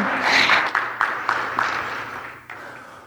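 An audience bursts into applause, a dense crackling wash of many hands clapping that is loud at first and then gradually thins and fades over about three seconds.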